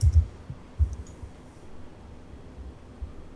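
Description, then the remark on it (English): Muffled, soft typing on a computer keyboard in a few irregular bursts of dull taps, fairly quiet, with short pauses between keystrokes and no one speaking. “Well, excuse my typing for a second here.”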